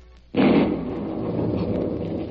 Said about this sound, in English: At first, I thought the police had arrived. Then I realized it was thunder. A heat storm was breaking.